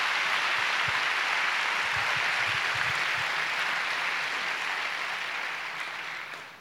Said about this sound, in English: Oh, come on, give God a big clap.